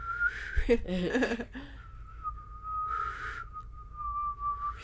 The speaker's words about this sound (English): Do you breathe in to whistle? You don't breathe out? I breathe in. I can't whistle very well. I can blow out a little bit, though. Let me try it.